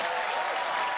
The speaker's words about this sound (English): They're only applauding because that applause button. You know, everybody in that audience is like, damn, that's wrong.